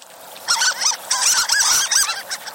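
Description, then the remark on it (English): A flurry of high, thin squeaking calls from harlequin ducks (Histrionicus histrionicus), several short notes tumbling over one another in quick succession, clear with no voices present. “Some, like the harlequin, squeak, earning them the nickname of sea mice.”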